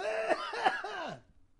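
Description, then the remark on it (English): A short burst of three raspy coughs in quick succession from a person who has been talking in an aggressive, pitch-changing voice, each with a strained, wheezy pitch sweep, fairly loud before falling silent. “That made me cough. That was a weird cough, too.”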